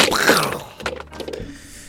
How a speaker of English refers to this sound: I threw him down on the chair.